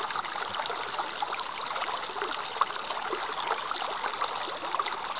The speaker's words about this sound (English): coming to you from beautiful Montana. Listen to the babbling brook in the background. It's an actual brook that I'm walking by, and oh, it soothes my soul.